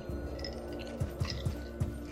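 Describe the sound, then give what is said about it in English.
Someone chewing a chip, with four or five soft, crunchy bites in a steady rhythm over a constant low hum. No one speaks. “Yeah, well, that's me chewing.”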